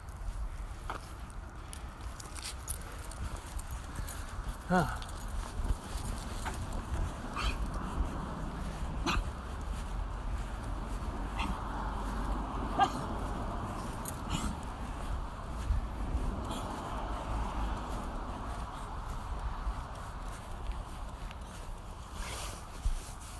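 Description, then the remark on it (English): A dog out on a walk, peeing on the bushes: rustling, sniffing and occasional small clicks and jingles over a steady low outdoor rumble, with no one speaking. “Good boy, buddy. Peeing on the bushes.”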